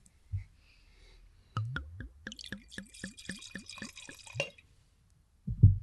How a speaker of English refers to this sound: That sounded like a pour from a bottle that could have been cleaned and reused.